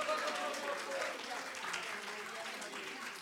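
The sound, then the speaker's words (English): Many people clapping their hands together in a steady, dense wash of applause, fairly loud and continuous, with indistinct voices mixed in beneath the clapping. “Okay, somebody clap your hands.”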